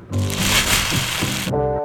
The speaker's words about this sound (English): There's so much crumpled paper.